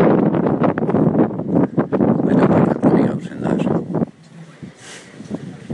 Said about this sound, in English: It's windy. Oh, it's definitely wet up there.